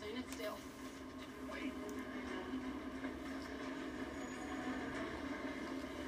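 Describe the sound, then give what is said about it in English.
A train rumbles past with a steady heavy drone and clattering metallic knocks running the whole way through without letting up. “Now I feel like we're in Pee-wee's Big Adventure with the whole train sequence, you know?”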